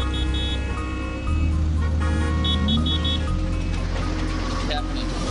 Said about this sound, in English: Traffic is so bad. There's roadblocks.